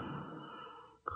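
A woman snoring: one long, raspy breath drawn out for about a second, ending in a short, sharper nasal snort. The sound is quiet, and no one speaks.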